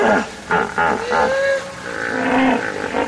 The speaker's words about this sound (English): I've found that hippos often will herd in a pool, and then there'll be another pool down the river, maybe 2 or 3 kilometers down. And there seems to be an important communication between these groups. Hippos will chorus these bellows and other sounds